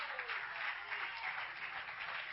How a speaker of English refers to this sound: This is the church. This is the place. You are the people. So clap your hands to the Lord God Almighty.